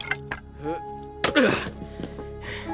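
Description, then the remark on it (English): Several sharp, irregular chopping thwacks of an axe splitting wood, one much heavier blow in the middle, over a steady low hum with brief murmured vocal sounds between strikes. “Stack this wood, why don't you? I'll keep chopping.”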